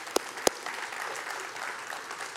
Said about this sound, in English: You can begin fresh and anew, and truly God can make all things new. Yeah, we can clap for God.